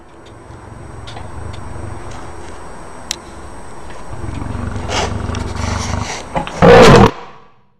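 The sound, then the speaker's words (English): A lion on a video growls low and rumbling, then lets out one loud roar near the end, with faint ticking clicks in the background and no talking. “This is a video of a lion.”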